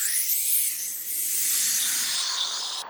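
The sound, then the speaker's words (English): Steam hisses steadily from a hot dinner, a continuous airy, high-pitched rush that holds at an even loudness for about three seconds before cutting off abruptly. No voices. “The steam from my dinner hissed.”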